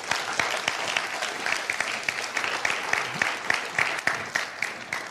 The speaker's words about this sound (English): Thank you for the lovely ministry song and the beautiful worship this morning, and all our worship team and singers. Thank you for leading us into the presence of the Lord. Let's give them a clap this morning.